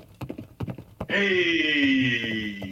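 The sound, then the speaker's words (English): A quick burst of galloping hoofbeats, several sharp clops in an uneven rhythm, gives way after about a second to a loud, sustained high-pitched cry that slowly falls in pitch. “horse gallop, horse brain.”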